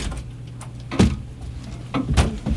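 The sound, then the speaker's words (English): A door with a doorknob is pushed open with a sharp clunk, followed about a second later by a couple more knocks and rattles over a low steady hum. “Is this the door? It's called a doorknob.”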